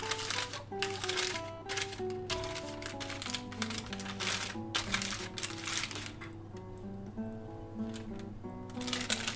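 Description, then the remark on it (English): Paper crinkles and rustles in short bursts as it is folded over the top of fish seasoned with spices and herbs, with steady background music playing underneath throughout. “And we're just going to wrap the paper over the top of the fish to keep all those spices and herbs, keep those flavours in.”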